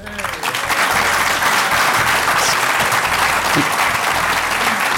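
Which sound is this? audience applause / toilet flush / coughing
audience applause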